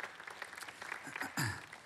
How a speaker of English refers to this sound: You can clap at that.